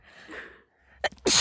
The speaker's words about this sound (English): Bless you. You have such nice little sneezes.